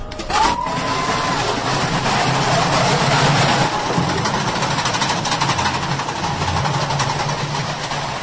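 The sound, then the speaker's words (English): Stomp performers play their piece Bins, percussion music on dustbins, at the Times Square forecourt in Causeway Bay, Hong Kong: a loud, dense stream of rapid metallic hits with a rattling, almost machine-like clatter that keeps up steadily throughout. “That was a little snippet from a piece that we have in the show called Bins, where we make music with dustbins”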